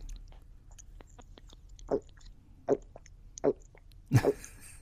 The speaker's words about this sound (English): Excuse me. I'm going to take a swig of water. You can edit this out if you want to.